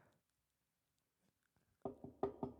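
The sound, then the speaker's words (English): Four firm knocks on wood come in quick succession near the end, fairly loud, after a stretch of near silence with no one speaking. “I hope you heard that. That was me knocking on wood.”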